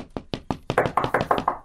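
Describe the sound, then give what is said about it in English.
About a dozen sharp knocks on wood, a few spaced raps that quicken into a rapid, steady run of fairly loud hits. No talking. “Knock on wood if you hear me.”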